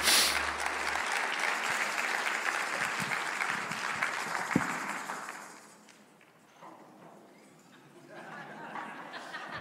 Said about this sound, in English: Let's give Jesus a clap. Come on.